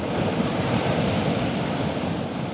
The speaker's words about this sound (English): Out on the water, conditions were rough. The crew would have to power through the choppy waves and relentless sea spray